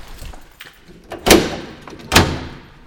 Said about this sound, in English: pulls out a drawer full of beetles, all subtly different.